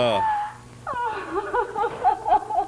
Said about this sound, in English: Will everyone in the theater hold on firmly to his seat, please? Here comes the scream. It's coming. There it is.